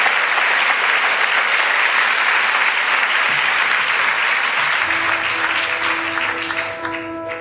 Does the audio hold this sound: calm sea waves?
no